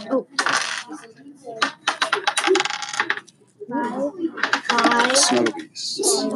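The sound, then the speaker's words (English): A single small die rolled in a game clatters and rattles across a hard tabletop in quick bursts of sharp clicks, fairly loud, with voices talking in between; it lands on 1. “Just 1 dice.”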